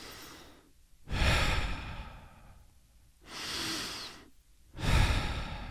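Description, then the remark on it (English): Slow, deliberate breaths drawn in and let out, three long airy swells in an unhurried rhythm with quiet pauses between them. “There's no time attached to my breath.”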